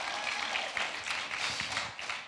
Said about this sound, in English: Put your hands together one more time and give the Lord a little round of applause.